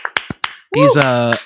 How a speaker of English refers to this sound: Let's literally give … a round of applause right now. That's fucking amazing.